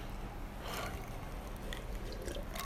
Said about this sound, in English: Had to get a little water.